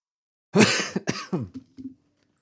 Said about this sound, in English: I am so sorry for coughing in your ear. Just what you want in 3D sound.